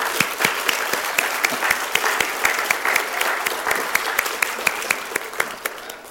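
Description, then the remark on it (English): Steady applause from an audience for the people who did the work, many hands clapping in a dense, continuous patter with a few sharper individual claps standing out, sustained for several seconds with no talking. “Now, let's give some applause for those people that all that work.”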